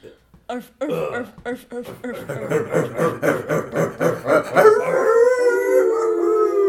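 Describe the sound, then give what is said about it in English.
Several people yelp in a quick, rhythmic chant of dog-like barks, then break into a long, sustained howl, loud, voices imitating a pack of dogs. “No, those howling bulldogs.”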